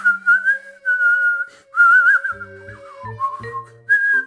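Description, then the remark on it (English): A footman whistles a short, wandering tune, holding clear sustained notes that slide and waver in pitch, with brief pauses between phrases and no talking. “"Anything you like," said the footman, and began whistling.”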